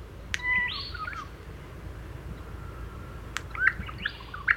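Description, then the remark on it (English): An Australian bird sings two short, simple phrases a few seconds apart, each a brief run of clear, bright notes, over a steady low background hiss. “It's very simple, like a lot of Australian bird songs, not like birds in Europe that go on for 20 to 30 seconds.”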